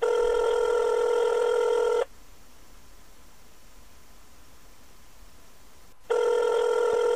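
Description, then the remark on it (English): A steady electronic ringback tone of an outgoing Signal app call to Ukraine sounds for about two seconds, pauses for four seconds of faint hiss, then starts again. Clear, with no talking. “I'm going to go back to Signal to find out what's going on there, see if maybe we can get through that.”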